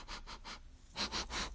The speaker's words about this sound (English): So just waiting for this to fizz and we'll do a taste test momentarily. All right, let's give it an old sniffy sniff.